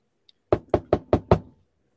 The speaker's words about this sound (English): Hang on one sec, boys. I'll be back. Get a knock on the door.